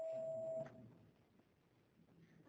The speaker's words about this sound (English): There's the bell, huh?